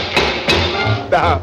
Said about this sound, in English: But your luck will change if you'll arrange to knock on wood.